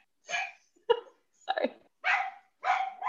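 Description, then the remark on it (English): A dog barks five times at an Amazon delivery person, in a steady rhythm, sharp, loud bursts spaced about half a second apart, heard alone with no talking. “So that's what she's barking at.”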